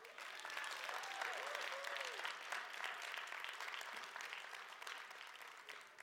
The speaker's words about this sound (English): All right, I know you guys are going to want to clap, so go ahead and clap.